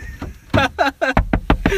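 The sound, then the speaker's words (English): A car door being unlocked outdoors in cold weather: a quick run of sharp mechanical clicks and short chirps, roughly eight in under two seconds, with no voices. “Is that how you unlock... I don't remember how to unlock the car.”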